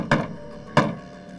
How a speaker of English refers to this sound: The Island Boy tries to warn his friend by using a special knock signaling danger.